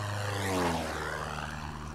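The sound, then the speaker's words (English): A propeller aeroplane drones overhead above a remote desert waterhole community, its steady engine hum swelling slightly as it passes and then holding on, with no voices present. “And when they saw the first aeroplane coming, they thought there was this evil spirit.”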